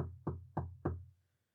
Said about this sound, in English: When I had made an end of these labors, it was 4 o'clock, still dark as midnight. As the bell sounded the hour, there came a knocking at the street door.